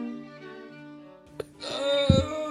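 A drawn-out, breathy yawn with a voiced, humming tone that swells louder and rises in pitch partway through, broken by a brief click, then trailing off with a low rumble.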